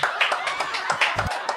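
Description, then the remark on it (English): A brief, fairly loud burst of applause: several pairs of hands clapping quickly and irregularly, the crisp claps blurring into a dense patter for a second or two. “I feel like that deserves a round of applause.”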